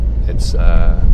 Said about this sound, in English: Obviously, I'm in a car. There's lots of car noises. There's an alarm going off next to me. Outside. There's the engine.